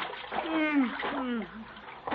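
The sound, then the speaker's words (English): Water splashes and sloshes for about two seconds as Gildersleeve, all wet after a fall, climbs out of it, fairly loud, with a wordless voice groaning and straining over the splashing. “No wonder I'm all wet. Help me out of here.”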